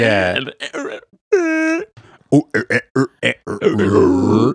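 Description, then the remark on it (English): A person growls and roars with the voice, mimicking a big dinosaur: a rough opening bellow, a sustained wavering tone, then a run of short, punchy grunts ending in a long, throaty rumble. “Oh, imagine the fucking T-Rex like roaring, but to bother them.”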